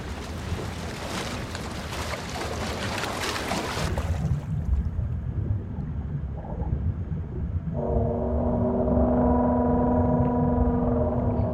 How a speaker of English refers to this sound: The crew steeled itself as the order was given, the ballast tanks flooded, and the Nautilus began to sink bow first into the freezing waters, her engines gunning full speed ahead.